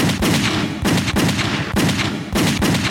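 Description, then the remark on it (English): Rapid bursts of gunfire from Cutter's gun hammer away at the shut door of a house, bullets splintering through it; sharp loud cracks in quick succession with brief breaks between volleys, no voices. “Cutter's gun erupted.”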